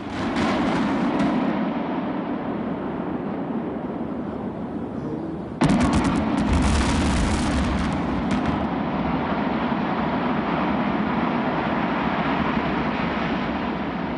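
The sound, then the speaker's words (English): A steady wash of noise is broken midway by a sudden, loud demolition blast that uses 197 pounds of dynamite and 137 cuts in steel to separate two reactors from two boilers. A deep, sustained rumble and roar follows and keeps going to the end. No one speaks. “We should hear and see this boom in just a second here as we are now at 8 o'clock.”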